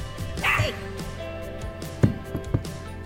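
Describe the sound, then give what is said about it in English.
A 9-week-old puppy, barking at its own reflection in a mirror, gives a high, yappy bark followed by a few short, softer woofs and yips spaced about half a second apart, over a steady low hum. “Our new puppy, Bruce, at 9 weeks old, he's just discovered his reflection in the mirror.”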